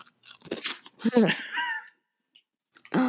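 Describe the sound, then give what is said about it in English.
Crunchy chewing of a pretzel: a run of loud, irregular crunches and mouth sounds, a brief quiet pause, then another sharp crunch at the end. “Like the pretzel I'm eating right now.”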